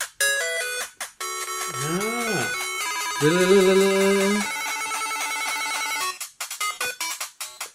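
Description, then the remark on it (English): The tune from the Nintendo game Balloon Fight plays in bright, buzzy electronic tones, with swooping pitch bends in the middle and a few short choppy notes to finish. No one speaks over it. “It's a nice little tune, nice little game.”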